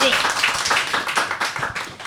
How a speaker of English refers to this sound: Now you can give her a round of applause.